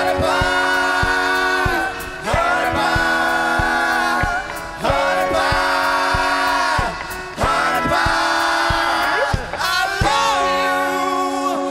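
Loud live rock music from a concert in Glens Falls, New York, with voices screaming a cover song in strained, sustained bursts, phrases repeating about every two seconds over a dense, distorted band and crowd-like noise.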